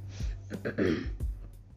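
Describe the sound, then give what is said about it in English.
A brief, gravelly throat clearing, a couple of rough rasping bursts with a low rumble underneath, heard alone without any speech. “Like, I had to clear my throat for that one.”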